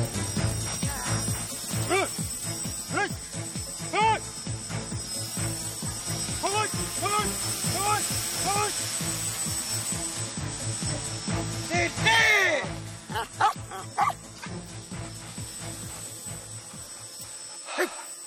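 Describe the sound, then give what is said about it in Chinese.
A large police dog, K.C., barks loudly and rapidly in a long unbroken series of sharp barks during police dog unit attack training against a noisy background, then the barking gives way to a few scattered thuds and quiet. “啱啱見到嘅咧就係警犬隊嘅攻擊訓練啦。”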